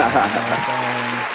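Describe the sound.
A short burst of dense, steady clapping, like a small crowd applauding, with a low voice droning underneath for most of it.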